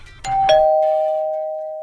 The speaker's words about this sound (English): your doorbell is always music to my ears.